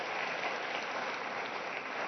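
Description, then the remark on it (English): A crowd applauds the launch of a ministry, a steady, dense wash of many hands clapping at an even, sustained level with no pauses or speech. “And so just real quick, I just want to give a hand clap that this thing has been launched.”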